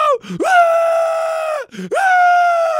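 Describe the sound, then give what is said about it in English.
An adult voice imitates a boy's loud, drawn-out scream and whine of "I want to go!" during a soccer game, two long sustained wails with a brief sharp intake between them, intense. “And he's like, she gets down there and he just screams, I want to go!”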